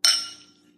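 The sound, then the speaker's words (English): A single bright clink of champagne flutes touching in a toast to the new year, ringing with a clear glassy tone that fades out over most of a second. “Well, cheers to the new year.”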